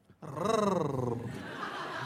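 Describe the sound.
A person's voice imitates the purring of Lee, a porch cat sitting on a woman's chest: one drawn-out, throaty, voiced rumble that rises in pitch, then slowly sags and roughens. It lasts about two seconds, fairly loud, with no other talk.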